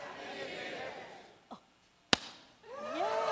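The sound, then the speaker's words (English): A sharp, loud firework pop bursts out once on New Year's morning, preceded by a softer thud, with lively voices chattering before and after. “If you hadn't had enough fireworks from last night, I brought some this morning.”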